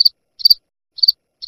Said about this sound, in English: Hello? Hello? Oh, crickets, huh?